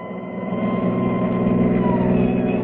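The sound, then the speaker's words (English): An ambulance engine drones steadily as it drives, a loud, continuous low rumble with a faint rising whine running through it and no voices. “Many's the time Kildare rode with me in this ambulance.”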